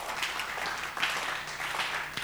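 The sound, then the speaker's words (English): A crowd claps steadily in a dense, continuous wash of applause that fills the whole moment, with no voices standing out above it. “And all those who are clapping, may heaven remember you.”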